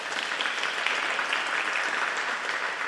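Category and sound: crowd, round of applause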